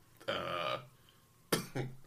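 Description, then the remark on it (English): A rough, drawn-out cough from a person who still has COVID, followed after a pause by two short, sharp coughs in quick succession, fairly loud with no talking. “If you're wondering why I'm coughing, yes, I do have COVID still.”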